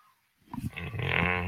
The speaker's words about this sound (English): So, Chella don't like that. He gave you a growl.